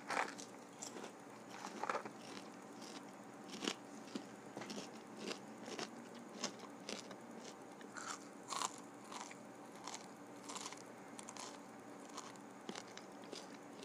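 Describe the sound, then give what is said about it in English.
Crisp ASMR crunching as food is bitten and chewed, with a steady stream of sharp crackly bites repeating for the whole stretch, loud, with no talking. “Some people like to hear the crunches.”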